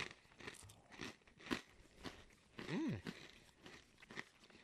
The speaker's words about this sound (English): What do you think? Here, crunching. These are good.